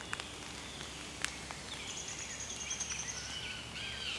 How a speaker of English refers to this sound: Downy woodpecker.